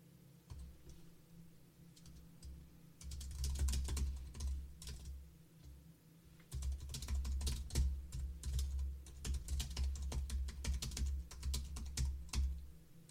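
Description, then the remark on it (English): Rapid clicking of keys on a computer keyboard, in dense bursts with brief pauses, over a steady low hum of background noise. No one speaks. “Well, I'm typing.”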